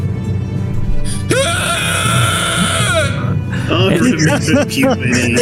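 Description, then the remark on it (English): A person lets out a loud, sustained scream lasting a couple of seconds, then breaks into ragged, strained groans and cries over a low rumbling background. “You begin screaming at the top of your lungs.”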